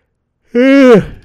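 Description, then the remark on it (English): After a moment of silence, a single short voiced yawn rises and holds briefly, then trails off into a breathy exhale, fairly loud. “Sorry, I'm yawning.”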